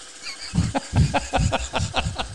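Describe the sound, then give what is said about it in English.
A new washing machine runs with a heavy, rhythmic thumping and clattering, roughly two knocks per second, loud, sounding strained and unhealthy. “It's a new washing machine. Doesn't sound too healthy.”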